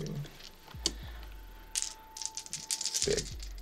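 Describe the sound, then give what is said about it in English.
Small dice clatter and rattle across a hard surface in several quick bursts of sharp clicks, fairly quiet, with a couple of dull thumps and no voices, as dice, including an extra die, are rolled for a check. “I got an extra dice.”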